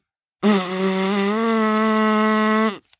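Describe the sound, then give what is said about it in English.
Blowing through a rolled paper tube makes one steady, buzzy, horn-like drone lasting about two seconds. It holds a low, even pitch that rises slightly, then cuts off abruptly. “I'm going to roll up a piece of paper and I'm going to try it right now.”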